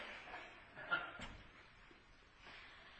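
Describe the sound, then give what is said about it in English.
A front door shuts with one dull thump partway through, against a low background of room noise and faint murmuring. “I left the front door open.”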